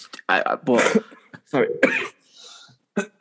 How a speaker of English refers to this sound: I'll try and edit out all the coughs.